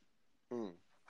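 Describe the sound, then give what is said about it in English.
A single short, loud dog bark rings out, a sharp burst amid otherwise quiet surroundings. “Oh, damn. Yeah, the dog.”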